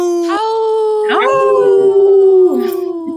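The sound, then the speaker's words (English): A person's voice lets out a long, loud wolf-like howl on the radio program Native Roots Radio, rising at the start and holding a steady pitch for about three seconds, with a second voice briefly joining in near the end. “Howl! Right on. That was a good howl.”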